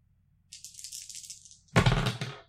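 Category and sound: household object, dice being rolled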